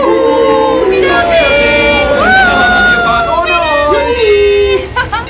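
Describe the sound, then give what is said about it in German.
A crowd of people on a pontoon, who are not allowed aboard, cheers and shouts continuously as the boat casts off, loud overlapping voices rising and falling in pitch, with whoops and calls blending into a steady roar that eases off near the end. “Spitze, ich fühle mich wie Königin Semiramis in ihren hängenden Gärten und das Volk jubelt mir zu.”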